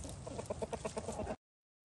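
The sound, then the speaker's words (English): Ducks swimming in a pond give a quick run of rapid, chattering quacks, fairly loud, lasting just over a second before cutting off into silence. “There's my duckies swimming along in the pond.”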